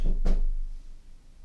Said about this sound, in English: Someone's just knocked on the door. Don't really know why. Kind of in this office. It's my first day and nobody's knocked on the door. So that's quite worrying. But did you hear the knock on the door?